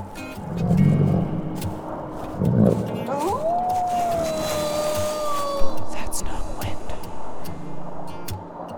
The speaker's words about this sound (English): And now, though deep in the forest, far from any trail, they begin to hear a low growl from somewhere within the pea soup fog. What's that? It's just the wind.